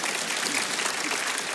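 Steady applause from an audience fills the whole moment, a dense, even wash of many hands clapping at once with no pauses or voices breaking through.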